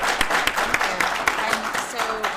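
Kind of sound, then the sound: crowd, round of applause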